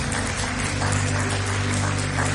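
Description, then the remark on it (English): An audience claps steadily, a dense crackling wash of many hands that holds an even loudness throughout, with a low steady hum beneath it and no voices. “So I know you're clapping now, but why don't you give a warm Hedgesville and Berkeley Springs welcome”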